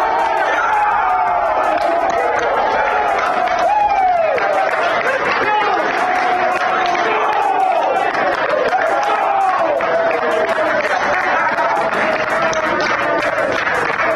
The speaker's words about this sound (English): That's the Aggie players applauding, and that is Coach Craig Smith yelling and hollering as the Aggies find out they are in the NCAA tournament.